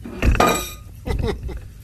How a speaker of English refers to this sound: No, I fell over. Sorry. Oh, you banged his head on the table. I'm fine.